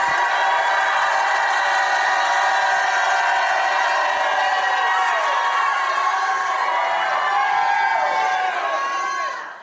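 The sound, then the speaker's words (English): A large audience at a sermon shouts and cheers loudly and continuously for nearly ten seconds, a dense wall of overlapping voices and whoops that swells and then cuts off abruptly at the end. “If you believe it, shout like you never shouted in your life.”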